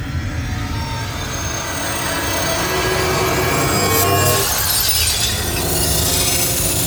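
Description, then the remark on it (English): An eerie, shrill screeching like glass screaming, sustained and loud for several seconds over a rumbling, grinding undertone, swelling slightly midway with no voices. “The glass is screaming.”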